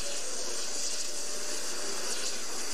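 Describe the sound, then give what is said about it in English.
A high-pressure water jet at 60,000 PSI cutting through a steel padlock makes a steady, sharp hiss, continuous and unbroken for the whole moment, with no voices over it. “That's not steel, that's water cutting through steel, magnified, powerful.”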